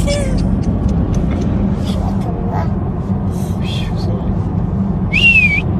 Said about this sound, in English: Listen to him whistle at the end.